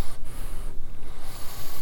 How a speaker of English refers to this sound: I can hear it. I have this little whistle in my nose that I'd never heard of before.